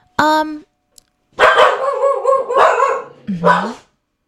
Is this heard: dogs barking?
yes